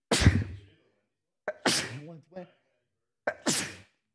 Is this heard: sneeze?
yes